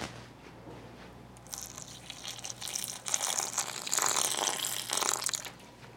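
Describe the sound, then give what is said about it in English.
Water pours steadily into a bowl of dry waffle mix, a splashing, gushing stream that starts after a brief quiet moment and swells louder before easing off, with no talking. “Now I'm gonna add the water.”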